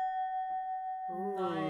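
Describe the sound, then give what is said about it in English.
A rubbed rim rings like a wine glass, holding a steady, pure, high tone throughout. Partway through, a voice starts up over the unbroken ringing. “It's like playing a wine glass.”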